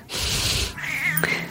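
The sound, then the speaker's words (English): A pet cat named Elaine lets out a short breathy, hissing sound and then a single drawn-out, wavering meow, fairly loud, with no one talking. “I heard she has quite the meow.”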